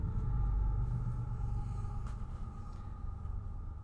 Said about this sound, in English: Oh, there's a train.